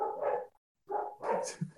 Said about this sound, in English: Did somebody come to your house? Because it sounds like all of your dogs started barking. No, I expect they're just barking for no reason. They do that. Somebody walked by, they are dogs. A mile away. They are dogs, actually. Yep. All three of them.